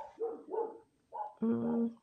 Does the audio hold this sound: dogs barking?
yes